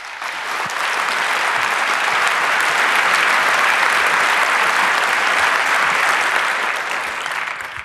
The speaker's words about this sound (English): So please give her a warm welcome applause.